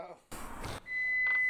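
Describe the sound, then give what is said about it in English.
A kitchen timer alarm rings out as a steady, high-pitched electronic tone. It starts just after a brief burst of loud rustling noise and holds clearly to the end. “Oh, that's the ending alarm.”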